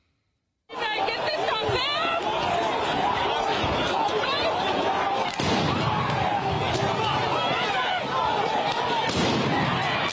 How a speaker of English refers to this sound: The crowd of people getting fired on by flashbangs, tear gas.